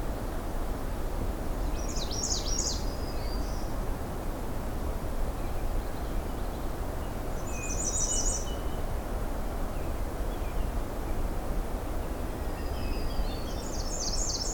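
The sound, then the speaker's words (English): A hermit thrush and a black-throated green warbler sing, their phrases spaced several seconds apart over a steady, loud wash of lake water lapping on the shore. No one speaks. “So in the background, we've got the hermit thrush and the black-throated green warbler.”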